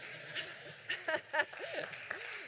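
An audience claps after the speaker admits to getting drunk on Boone's Farm, a steady, crackling patter that swells in a few brief louder bursts, with faint voices and murmuring running underneath.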